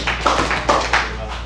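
A group claps together three times in quick, slightly uneven succession for a group being announced, each clap a sharp, fairly loud burst over a steady low hum.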